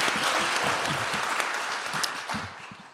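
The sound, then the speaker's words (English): Steady applause from a group of people, a dense continuous patter of many hands clapping that holds its level throughout and eases slightly toward the end. “Nobody needs to clap that for everything.”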